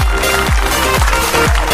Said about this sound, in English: Let's give ourselves a round of applause for being able to follow.